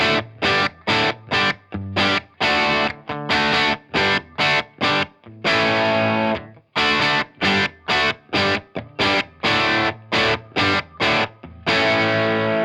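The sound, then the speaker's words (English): Heavily distorted electric guitar through an Iridium, with a Storm boost pedal in bypass mode, plays loud, punchy chords in a tight, choppy rhythm with short gaps between bursts and a few longer sustained chords, alone with no talking. “Let's listen to the first example. The Storm is in bypass mode, for example one.”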